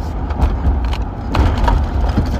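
A car driving to Starbucks, heard as a steady low engine and road rumble with a few faint clicks and rattles scattered through it, no voices present.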